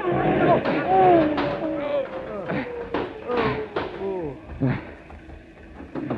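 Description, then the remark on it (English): A bus is deliberately yanked off the road into a ditch: a rapid series of loud thuds and jolting impacts over several seconds, with panicked voices shouting throughout. “That bus was pulled into the ditch on purpose, sir.”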